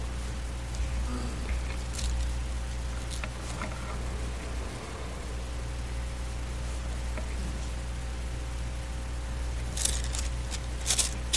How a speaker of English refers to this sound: As long as I hear pages turning, I'll wait.